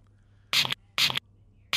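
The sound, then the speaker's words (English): Three short, sharp hisses of an aerosol can of Mr. Sheen furniture polish being sprayed, each puff lasting about a quarter second and spaced at a steady rhythm, with only a faint low hum between them. “Oh, she's spraying it.”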